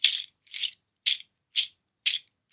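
A stick rattle strung with nuts is shaken in steady bursts, six dry clattering rattles about half a second apart, bright and woody, with silence between them and no voices.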